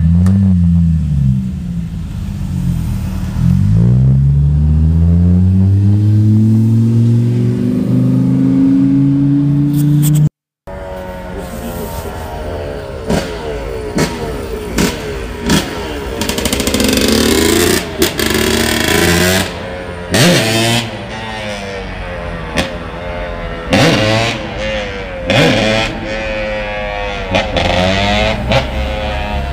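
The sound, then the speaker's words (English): A loud, raspy 1989 Subaru with a modified 'fart kit' exhaust revs repeatedly in a neighborhood, its pitch sweeping up and down in rising harmonic swoops, then cuts off briefly before more sharp, crackling blips and revs. “Fart kit and an 89 Subaru.”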